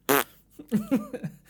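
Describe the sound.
A man blows a short, buzzy, loud raspberry imitating a fart while raising the finger, followed by a few quick vocal bursts that sound like playful chuckling or sputtering.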